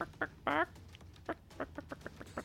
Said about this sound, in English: And the chicken makes a break for it.